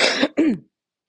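Two quick, harsh coughs in a row from a person with a persistent cough, fairly loud, with a raspy throat-clearing quality, then silence for the rest of the moment.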